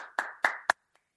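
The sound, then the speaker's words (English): A short burst of applause from a classroom: three sharp hand claps in quick succession, then one faint final clap as it dies away. No voices. “She walks away as the classroom applauds.”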